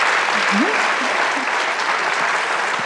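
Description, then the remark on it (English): An audience at a panel discussion applauds the panelists and moderator steadily, a dense wash of clapping that holds at an even level for the whole stretch, with a brief faint voice-like tone rising briefly underneath. “Please give a round of applause for our panelists and for our wonderful moderator.”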